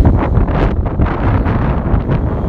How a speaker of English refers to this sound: I hope you can hear me with this wind.